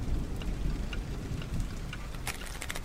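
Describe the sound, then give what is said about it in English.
Steady storm rain pours down with a constant rushing hiss over a deep low rumble, the patter growing sharper and more splashy toward the end. No voices. “Who makes deliveries in the middle of a storm?”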